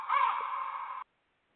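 A single harsh, raspy raven call, drawn out for about a second, loud and close, then cut off abruptly into silence with no one speaking.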